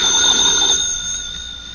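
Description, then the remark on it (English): A telephone rings with a bright, high-pitched electric trill, loud at first and then thinning to a softer, steady tone that carries on alone with no voices. “Hadn't you better answer the phone? Why answer it? I'm going to relax and let things work out. Maybe it'll stop ringing.”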